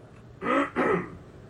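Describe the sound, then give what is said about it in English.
A gravelly throat clearing in two quick rasping bursts, one right after the other, with no talking around it and quiet before and after. “I turned my cough button on.”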